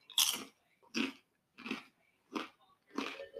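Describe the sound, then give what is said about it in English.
Crunching as someone chews an unseasoned, very crunchy, not dense pita chip, five loud crisp bursts in a steady rhythm about two-thirds of a second apart, with quiet gaps between and no talking. “I'm sure you guys can hear me crunching on it, but The one thing I like about it is that usually when I get pita chips, they're extremely dense.”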